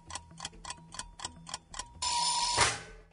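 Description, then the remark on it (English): A game-show countdown timer sound effect ticks in a steady, quick rhythm, about nine sharp ticks, then ends in a sustained buzzing tone with a bright burst near the end. No one speaks. “That, did you hear that timer effect even though she got it, Chris?”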